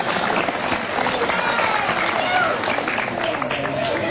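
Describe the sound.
An audience claps steadily, a dense, even wash of applause filling the whole stretch, with a murmur of voices mixed underneath.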